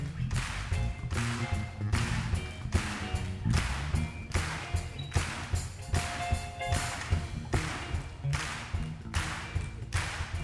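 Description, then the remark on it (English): A crowd claps hands together in a steady, even rhythm, sharp loud beats about twice a second over a low sustained musical hum. “Put them together and clap them at it.”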